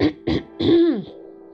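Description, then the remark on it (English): Fairly loud throat clearing: two quick rough bursts, then a longer voiced rasp that slides downward in pitch and trails off, with no talking around it. “So it kind of started with me, let me clear my throat.”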